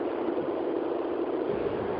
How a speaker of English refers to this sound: No, that wasn't the feedback, hon. You're in the car, we can tell.